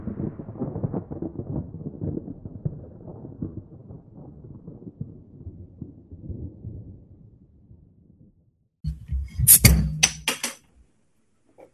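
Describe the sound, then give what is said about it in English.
An alcoholic drink being opened: several seconds of low, muffled rumbling handling, then a sudden loud burst of glassy clinks and sharp cracks before the sound cuts off. “The sound of an alcoholic beverage being opened and about to be consumed.”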